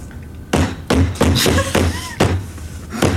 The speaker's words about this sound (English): I was knocking on the table to make Pierre think it was a door